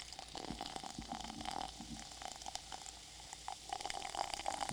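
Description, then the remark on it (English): Sparkling flavored water is poured steadily right in front of a microphone, a continuous liquid gush with a crackly fizz of bubbles running throughout, with no voices. “Here, pour it. Pour it right in front of the microphone.”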